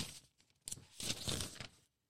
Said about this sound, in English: Do you think that I'm not even looking at my notebook right now. I'm just turning the pages under the mic, so it sounded like I was doing something here in the background.